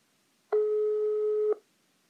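A single steady telephone line tone sounds for about one second as a regular phone call connects, clear and fairly loud, starting and stopping abruptly with silence on either side and no voices.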